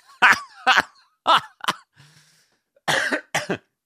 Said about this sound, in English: Just, there's a dry cough for you people.